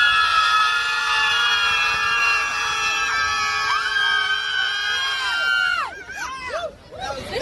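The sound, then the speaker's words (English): A crowd of pro-abortion protesters in New York screams at the sky together in one long, loud, sustained shriek for several seconds, which then breaks apart into ragged, wavering bursts of yelling near the end. “Here are pro-death, pro-abortion screamers in New York yesterday who appear to believe again, like during the election, that screaming at the sky will change something here.”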